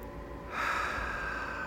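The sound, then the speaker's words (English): A single slow, deep breath drawn in through the nose, a soft airy rush that swells after a quiet moment and holds steady, fairly faint, with no talking. “Feel every breath filling your lungs. And feel every breath as you release it.”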